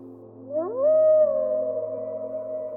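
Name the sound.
wolves howling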